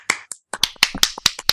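A quick run of about nine sharp hand claps, given as a round of applause at the end of a segment, crisp and fairly loud, in a slightly uneven rhythm with short gaps between them and no voices.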